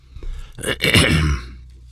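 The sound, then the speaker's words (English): A single harsh, fairly loud throat clearing, rasping for about a second before trailing off into quiet. No talking over it. “I got a bug in my throat or something here.”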